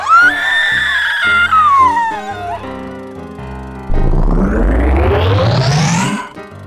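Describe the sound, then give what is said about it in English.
A shrill, high-pitched, blood-curdling scream rings out in the dark and slides downward for a couple of seconds, then gives way to tense sustained musical tones and a loud, rising swell that climbs to a peak. “But there was only one blood-curdling scream.”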